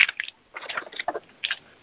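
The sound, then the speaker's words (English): A paper grocery bag from the grocery store rustles and crinkles in several irregular bursts as groceries are unpacked, with short pauses between the crisp, crackling handling sounds. Nobody speaks. “What is that noise? It's a paper bag that we got at the grocery store.”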